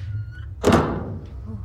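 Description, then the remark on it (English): A door at the end of a long corridor, leading to a hidden cinema beneath a cinema, is opened with one solid clunk that rings briefly and fades, set against a steady low rumble of background noise, with no talking. “There must be a door somewhere. A door somewhere here. There it is.”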